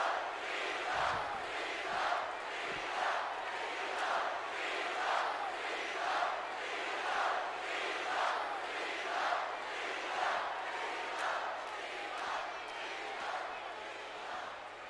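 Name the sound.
arena crowd noise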